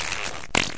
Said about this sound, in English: I say that because when I farted right there, I just shit a little bit in my pants. Yeah, they call that a shart.